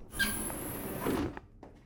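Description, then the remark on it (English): A door slides open with a steady airy hiss lasting about a second, followed by two soft clunks as it settles, moderately loud. “the door.”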